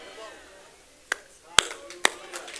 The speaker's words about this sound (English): Yeah, I'll clap for myself because I'm preaching better than your amens right now.